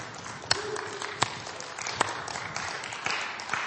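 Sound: audience clapping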